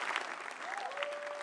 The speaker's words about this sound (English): Yes, you can clap your hands for the Lord.